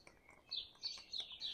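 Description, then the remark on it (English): Birdsong outdoors at the front of a house on a very treed street: a string of high, bright chirps and trills repeating in quick bursts, with no voices. “You may hear the bird song get louder here, because it is louder.”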